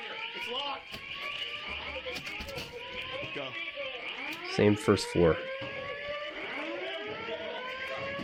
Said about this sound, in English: Fire alarm still going off.